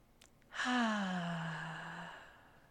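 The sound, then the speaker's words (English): During a breathing exercise, a faint, brief intake of breath into the stomach is followed by a long, audible exhale that carries a low voiced hum, fairly loud, fading out over about two seconds with no talking. “First, breathing into our stomach, and you can exhale audibly if that feels good to you.”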